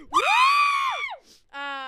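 A person lets out a loud, piercing scream that holds for about a second, then there's a quick breath and a shorter, lower-pitched vocal cry.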